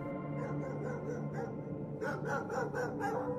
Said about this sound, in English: Hearing those wild dogs barking out there in the snow didn't mean that much at first, but then I remembered something.